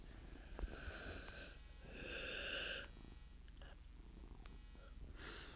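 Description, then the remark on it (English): A cat purrs softly, its low rumble rising and falling in a couple of swells, with no one talking. “Stop, Marley. I'm sorry, my cat's being stupid.”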